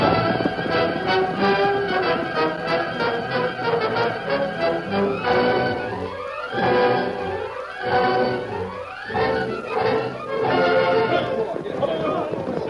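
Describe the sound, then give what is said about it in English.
Rapid hoofbeats of galloping horses, including the horse Silver, drum steadily as the riders race to meet the posse, mixed with a busy, dense layer of sound; the pounding rhythm continues throughout without pause. “Come on, Silver, faster!”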